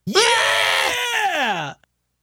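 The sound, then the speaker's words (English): A person's voice imitates a screaming goat: one loud, strained, bleating cry lasting under two seconds, sliding downward in pitch before cutting off abruptly. “What do goats do? They scream.”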